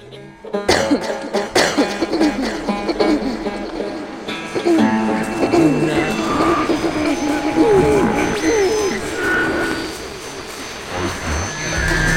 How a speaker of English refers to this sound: Excuse me, I need a cough.